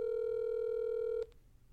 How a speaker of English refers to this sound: Okay, calling. Call. I had the number saved. Ringing.